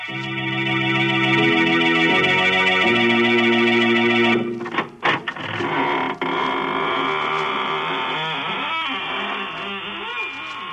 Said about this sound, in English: Good evening, friends. This is your horror host at the squeaking door of the Inner Sanctum. Come in, come in.